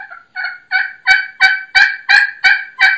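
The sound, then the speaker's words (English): A Primos Crystal slate pot turkey call makes a steady, rhythmic run of about nine sharp, raspy clucks, loud, each note evenly spaced and growing slightly stronger, with no talking. “You can cluck on it.”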